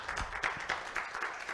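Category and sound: crowd, audience clapping hands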